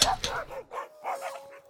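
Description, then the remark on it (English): Wolves released from a castle's kennels bark and yip in a rapid, uneven series of sharp, high-pitched calls, several overlapping bursts in under two seconds, fairly loud with no one talking. “And so the flying monkey and farmer with flying wings, who dressed like a sort of bellhop for some reason, flew down to the castle's kennels and released the wolves.”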